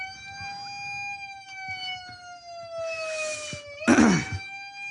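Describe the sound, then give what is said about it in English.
A police car siren wails steadily outside, its pitch sliding slowly down before sweeping back up, moderately loud, with a brief burst of rushing noise near the end and no one talking. “I think there's a cop car. Okay, outside.”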